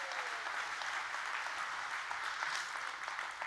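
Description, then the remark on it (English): A sustained round of applause from a church crowd honoring all the dads on Father's Day, dense overlapping hand claps at steady volume for several seconds, with no speech over it. “Let's give all the dads a good hand clap. Come on, give it up for them.”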